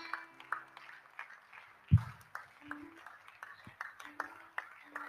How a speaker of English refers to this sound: Oh, the way you are clapping, it's very weak. If your clapping is not solid, he will not preach you.